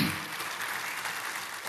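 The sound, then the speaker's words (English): A crowd applauds steadily, a dense wash of many hands clapping at an even, moderate loudness throughout, with no voices standing out. “Don't applaud for me.”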